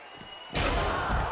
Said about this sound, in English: John Cena hit that chair again, and he's bleeding profusely.